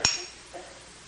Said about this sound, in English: The hammer, hitting those nails, driving them into Jesus' hands and feet.